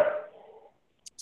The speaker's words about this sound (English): No, mine doesn't sleep. She just barks.